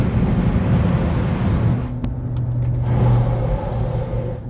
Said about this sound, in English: I'm driving, so if it's a little loud, I have the speakerphone on, and I don't know why my car isn't like one of those quiet cars. I hate that. I love the car, but it's not.